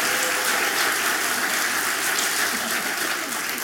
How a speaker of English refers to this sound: Go give them one more round of applause.